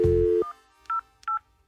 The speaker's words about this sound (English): And stop the phone ringing. That isn't necessary because I emailed them.